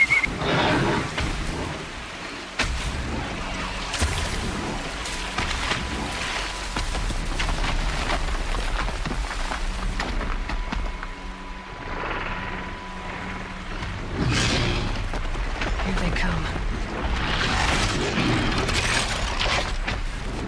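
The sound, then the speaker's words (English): A robotic dinosaur is killed by Aloy in the video game Horizon Zero Dawn on PlayStation 4: loud, continuous mechanical groaning and roaring with whinny-like cries, rumbling impacts and crashing bursts, swelling again near the end. No one speaks. “Yes, Aloy is finally killing Truckosaurus.”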